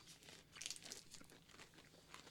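Crisp crunching of someone chewing a potato chip Big Cup peanut butter cup, with crackly bursts repeating irregularly for a couple of seconds and no talking.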